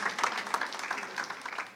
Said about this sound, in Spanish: Deme un aplauso al Señor.